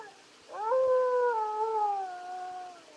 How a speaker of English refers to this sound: That's strange. That howl's coming from the east wing of this cabin, right over there.